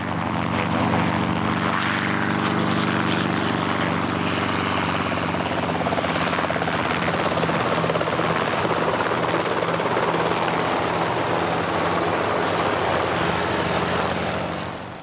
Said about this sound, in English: As far as we're concerned, lift is what we produce to get 2.5 tons of helicopter up off the ground and accelerated into forward flight. The blades are responsible for producing in a helicopter both the lift and the thrust to give it speed.